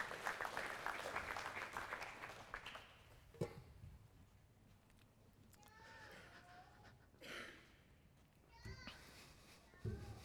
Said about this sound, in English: Can you give him a round of applause?